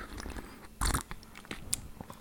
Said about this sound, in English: Right, let's have a little sip there.